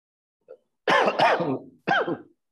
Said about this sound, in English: Just one sec. I think I was having a cough.